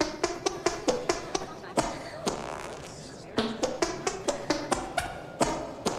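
A rhythmic string of squelchy armpit farts pops out in a tune-like pattern, roughly a dozen quick bursts with a short pause partway through, as the film character Betty Bonswoggle tries to play the 1812 Overture with armpit farts.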